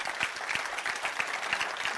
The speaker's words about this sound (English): If you believe it, clap your hands and say amen.